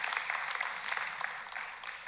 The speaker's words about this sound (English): We're a mosaic because it's the gospel lived out. We're a mosaic because, amen, yeah, you can clap for that.